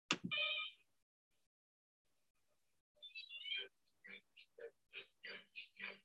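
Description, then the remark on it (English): A spy film theme tune in bright, reedy tones: a short opening blast, a pause, then a quick rhythmic run of evenly spaced notes, moderately loud. “See if you recognize this tune.”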